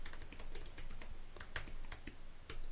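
Rapid, uneven clicking of keys on a computer keyboard while doing a news search on Google News, a steady run of sharp taps with brief pauses, heard alone without any voices.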